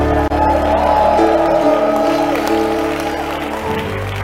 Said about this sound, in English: Hallelujah. I thought you'd give the Lord a better shout in praise.